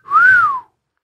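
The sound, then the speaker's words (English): A single loud imitated wolf whistle glides up and then slides back down in one smooth arc, like a catcall, short with no talking around it. “And fucking whistling at our, he was doing cat calls at our liver, you know.”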